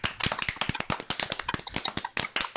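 A brisk round of applause from a small group, dense overlapping claps in a steady rapid patter lasting a few seconds, moderately loud with no voices over it.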